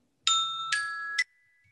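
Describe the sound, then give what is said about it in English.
A bell chime rings three times in quick succession, bright and tonal with shimmering overtones, the last strike cut short, then a faint lingering tone fades into near silence. “Nice timing for the bell.”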